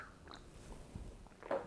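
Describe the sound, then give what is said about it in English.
A soft sip of hot coffee from a mug, with quiet wet mouth noises and a brief slurp near the end, no talking. “So I'm just going to have another sip of this, actually, before I move on, because I really, really like this coffee.”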